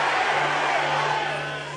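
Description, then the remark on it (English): A loud, dense crowd of worshippers shouting together at a preacher during a prayer session, a sustained roar easing off slightly toward the end. “As you are shouting at me, something is jumping out of your life.”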